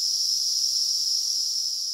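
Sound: cicadas buzzing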